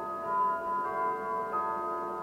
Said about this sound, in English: That's quite the clock. Exactly. Oh, yeah. I had that in the orchard. Oh, that's a beautiful chime.